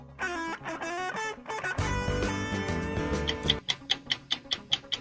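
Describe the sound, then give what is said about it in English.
Quiz countdown timer music for a 60-second round in the category 365 days: a short melodic lead-in swells into a full, bass-heavy musical sting, then gives way to steady, evenly spaced ticking pulses like a clock counting down. No voices. “Your time begins when Paul plays the music.”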